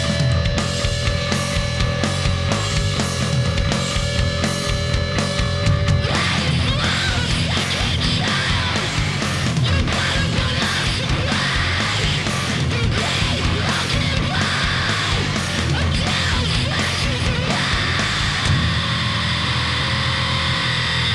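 A loud, dense song with sung vocals over heavy, driving drums and distorted instruments; a sustained tonal opening gives way to a fuller, noisier section, easing slightly near the end.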